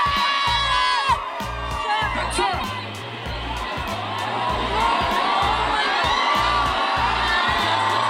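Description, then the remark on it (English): A large concert crowd screams and cheers continuously as a performer comes out on stage, a dense wall of high-pitched shrieks and whoops over a steady, pulsing low bass beat thumping through the venue. “But he's coming out on stage. People are screaming. You can't really tell if they're actually like cheering or if they're like.”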